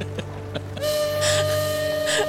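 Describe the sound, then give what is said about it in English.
A train whistle blows one long, steady, loud tone, rich in harmonics, starting partway through and holding to the end over a low rumbling hum with a few faint clicks before it. “The whistle goes again.”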